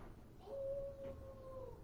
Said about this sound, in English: Someone is howling outside my window. That was super weird.